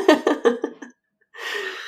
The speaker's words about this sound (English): Sorry, guys. Haven't decided if I'm gonna cut out my coughs or keep them for your listening pleasure.